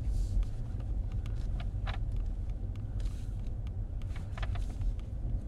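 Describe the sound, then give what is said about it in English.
A car with its roof missing drives near the Alameda Comedy Club while looking for parking, with a steady, heavy low rumble of engine and road noise throughout, punctuated by faint clicks and brief brighter swishes, with no one talking. “I have pulled up to the scene with my ceiling missing. Where can I park?”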